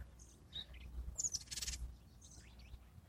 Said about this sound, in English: Is that a different bird? I saw the cedar waxwing. I don't see this one that's singing. What are you? He's on the other side of this bush to me. Pretty song. Unusual one, not one we normally hear around here.